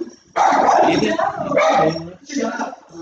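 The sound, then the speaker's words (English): A dog barks in a few loud, drawn-out bursts, the first long and rough, then two shorter ones after brief pauses, with no one speaking. “Jesus, just keep barking.”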